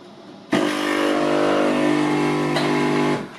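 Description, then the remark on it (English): A coffee maker kicks on abruptly with a loud, steady mechanical whir and buzzing hum, holding an even pitch for about three seconds before cutting off. No one talks. “So play this coffee maker clip.”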